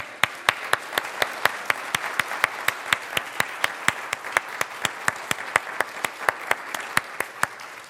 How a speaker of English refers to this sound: On the count of three then, again, happy birthday and then a big round of applause. So one, two, three, happy birthday.